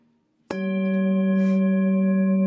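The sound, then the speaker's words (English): A meditation chime is struck once, a bright attack followed by a steady, sustained ringing tone with layered overtones that holds loudly without fading. No one speaks. “Allow the sound of the chime to call you to presence.”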